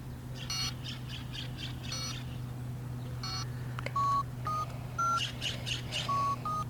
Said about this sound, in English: We can record the birds.